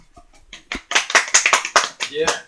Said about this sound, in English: Everyone, give a special round of applause